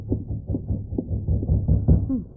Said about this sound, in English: Rapping on the door.